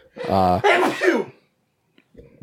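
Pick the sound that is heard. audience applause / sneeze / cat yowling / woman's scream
sneeze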